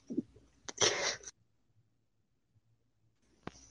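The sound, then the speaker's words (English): A short breathy intake, then one loud, explosive sneeze from someone in a very dry hotel room, followed by near silence and a faint click at the end. “hold on 1 second. There's a sneeze coming.”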